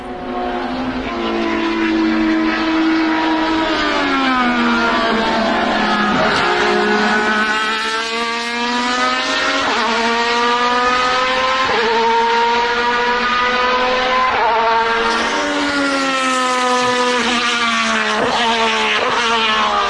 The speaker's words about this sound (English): No, so that is an Alpha 155 DTM car from early 90s, early to mid 90s. Was it the four-wheel drive? Yeah, four-wheel drive, V6. How big was the engine? Two and a half liter.